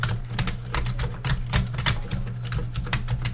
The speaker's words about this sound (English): This is me typing a very basic program on my Commodore VIC-20. The very one that I had as a kid. Still in pretty good shape, a little yellowed, but a pretty good machine.